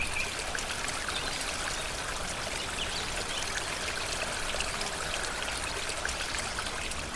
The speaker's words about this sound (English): Nearby, there was a river, growing stronger and stronger as we made our way up the path.